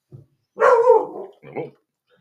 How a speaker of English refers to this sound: There's our dog warning us that a neighbor is about. Yeah, something is moving. Something has moved.